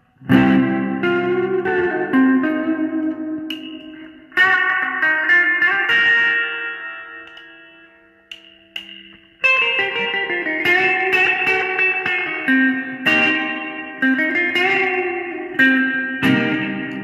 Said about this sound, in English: Also has another mode on it, which is just a standard spring reverb, and it also sounds.